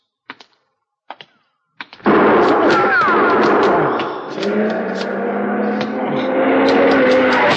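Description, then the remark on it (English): Three sharp, separate gunshots ring out about a second apart, followed immediately by a loud, sustained roaring rumble that fills the rest of the scene. “You've been hit.”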